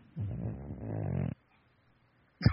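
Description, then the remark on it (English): A small, obese dog lets out a drawn-out, wavering groan that creaks and rasps like an old door swinging on rusty hinges, fairly loud, followed by silence and a brief thump at the end. “It sounds like a creaking door in a spooky house.”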